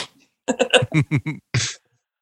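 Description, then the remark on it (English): A voice imitates a whip crack: a quick run of clipped, sung-sounding syllables followed by a sharp hissing snap, fairly loud, then silence. “The return to the whip.”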